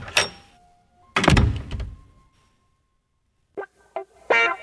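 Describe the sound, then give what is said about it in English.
A door opens and then thuds shut with a heavy thump, followed after a pause by a few quick latch clicks and rattles. “Go out that door, take a left, then take another left once you get past the cafeteria.”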